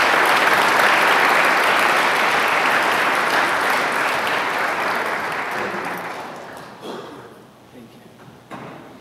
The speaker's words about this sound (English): Thank you. Good morning. You clap by faith, and I appreciate that.